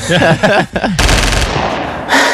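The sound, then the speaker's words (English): A loud burst of machine-gun fire sound effect rattles out for about half a second, trails off, then another volley starts near the end. A brief voice-like sound comes just before the shooting. “Is this where you put the gunshots?”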